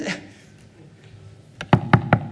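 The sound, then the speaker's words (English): A quiet, low murmur gives way to a series of about five sharp, evenly spaced knocks, loud, like knuckles rapping on a wooden door. “There's a knock at the door, and you go and you open the door, and it's suffering.”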